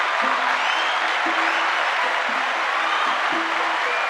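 A steady round of clapping from a group, dense and continuous at an even loudness for several seconds, with no voices standing out.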